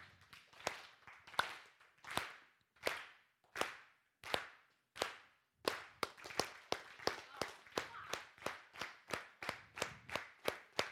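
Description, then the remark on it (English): A crowd claps in unison along with a speaker, first in slow, evenly spaced beats, then speeding up into a steady, faster rhythm of sharp, loud claps. “So all I want you to do is just clap with me.”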